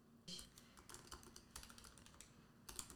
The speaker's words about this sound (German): Das ist auch vor allem sehr authentisch hier mit diesem Klicken im Hintergrund. Da kann uns niemand vorwerfen, wir hätten so getan, als wenn wir bestellen würden.